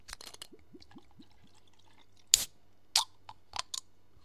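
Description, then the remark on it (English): Drink sounds of American Honey whiskey paired with Red Bull, with no talking: a few soft liquid gulps and bubbly chirps, then a sharp crack of a can or bottle opening with a brief fizz, followed by small clicks and sips. “But for SMR sakes, let's crack it open.”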